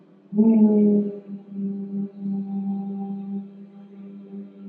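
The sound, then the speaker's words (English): A voice hums a steady, low closed-mouth "mmm" that swells in loudly at first, then settles into a softer, continuous drone held at one pitch, with only a brief dip partway through. “Just the M sound. Keep humming.”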